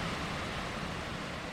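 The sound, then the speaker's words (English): A waterfall in Scotland, in peaty land, pours down a gorge in a steady, unbroken roar of rushing water, a dense hiss with a low rumble that holds constant throughout, with no voices. “We stand here for a while, watching the waterfall thundering down the gorge.”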